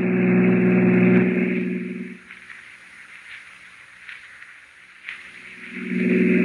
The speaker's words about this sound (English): I'm driving as fast as I can, Miss Prentice.